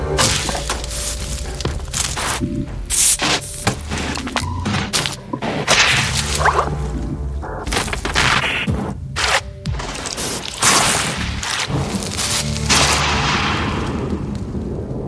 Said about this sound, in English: And there's this moment where you hear the expansion of the universe. So, like, and how she did it was... I'm just going to play it for you. It's really special.